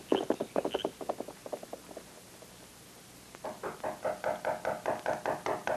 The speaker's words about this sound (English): The knocking on the door finally wakened Jim.